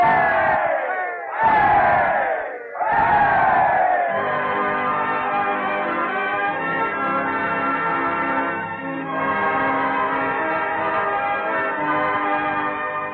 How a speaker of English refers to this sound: Let's give him the freedom of the city. Three rousing cheers.